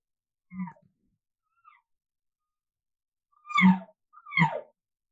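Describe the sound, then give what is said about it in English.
A person imitates mature cow elk calls through a tube: a short low note, a faint chirp, then two louder, deeper, raspy mews with falling pitch, separated by silence. “Those are your mature cow sounds.”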